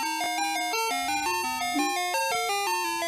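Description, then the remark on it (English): Ice cream truck music from a 10-hour YouTube video by PDX Productions plays loud: a bright, tinkly electronic chime melody stepping quickly from note to note in a steady, sing-song rhythm, with no voices over it. “They made a YouTube video of 10 hours of ice cream truck music.”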